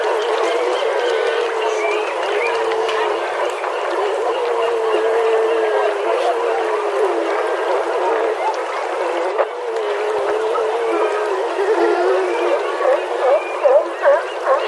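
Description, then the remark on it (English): A dense chorus of seal calls, overlapping eerie whistles, trills and swooping tones that rise and fall continuously, with sharper upward chirps near the end and no talking. “Are those seals, guys?”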